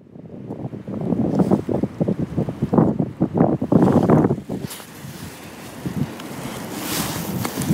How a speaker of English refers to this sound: If you can hear that, that's the end of Storm Eunice. And I've crouched down. I'm actually up in the branches of an oak tree, except that the branches are lying on the ground. And I'm hoping that the wind won't be too annoying for you.